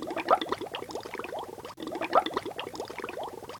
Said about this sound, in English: Sometimes they blow bubbles in the bath like hippos.